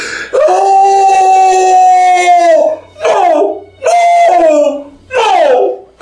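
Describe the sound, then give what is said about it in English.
A horrible, shrill scream from a few blocks down the road rings out, one long sustained wail followed by three shorter cries that each bend downward in pitch, loud and harsh with nothing else behind them. “You guys get to about the road, and you hear this horrible sounding scream from down the way.”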